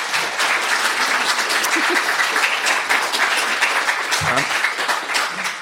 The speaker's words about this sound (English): Why don't we give them a round of applause for the hell of it?